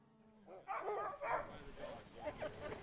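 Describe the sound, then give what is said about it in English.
Several sled dogs bark and yip together in a loose, overlapping chorus, the calls rising and falling with no clear rhythm, in a still, windless winter landscape at 20 degrees with the ground packed in ice and snow. “But piercing silence came the sound of barking dogs.”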